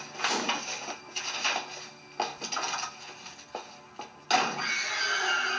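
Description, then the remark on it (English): A harsh, noisy jump-scare sound effect: a string of abrupt, grating bursts, then a sudden loud hit near the end that rings on. No one speaks. “There's that jump scare sound again.”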